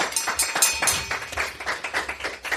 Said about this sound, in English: It's a very meager clapping exercise, that.